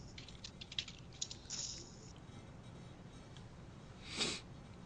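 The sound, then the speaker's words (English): Quiet, irregular clicks of typing on a computer keyboard as someone types a message to somebody, a brief flurry of keystrokes near the start, followed later by a short breathy sniff against a faint background hiss. “I didn't hear you because I was typing to somebody.”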